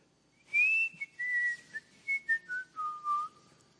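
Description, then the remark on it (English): A man whistles a short tune of several clear notes stepping downward in pitch, heard from the back of an office. “He hasn't whistled all week.”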